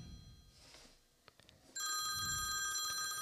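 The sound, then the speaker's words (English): A phone starts ringing with an incoming call abruptly partway through, a bright, steady electronic ringtone with sustained high tones, loud, following a few soft clicks and low background noise. “If you're walking through, not like the place where, oh shit, I got a fucking phone call.”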